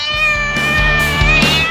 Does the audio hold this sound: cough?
no